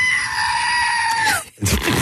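A person imitates a screaming goat: a loud, sustained, nasal wail held for over a second that bends downward at the end, followed by a short breathy burst of noise.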